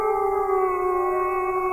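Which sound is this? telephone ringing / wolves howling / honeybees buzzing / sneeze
wolves howling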